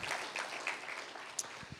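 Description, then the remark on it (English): A church audience breaks into steady applause, giving God a hand clap after a sermon word, dense overlapping hand claps forming a continuous crackling wash at moderate loudness, with a few sharper individual claps standing out. “Can we just give God a big hand clap for that word?”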